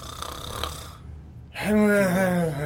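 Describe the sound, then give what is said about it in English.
Someone mimics Cookie snoring exceptionally loud: a raspy, breathy inhale, a brief pause, then a long, buzzing, throaty exhale that rumbles on to the end. “Cookie is snoring exceptionally loud.”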